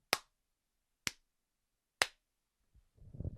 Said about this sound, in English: So the way you sync up clapping is by three claps.